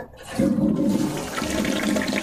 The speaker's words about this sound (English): It's a big flush of the toilet, if you know what I'm trying to say here.